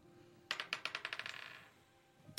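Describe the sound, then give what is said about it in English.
A die, rolled for a wisdom save and landing on 11, clatters across a hard tabletop, a quick run of sharp bouncing clicks that speed up and fade as it settles, followed by one last faint tap a moment later. No voices. “This is my regular dice tonight.”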